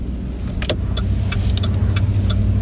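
A black truck's engine rumbles steadily, a deep continuous drone with scattered light clicks and ticks over it, and no voices.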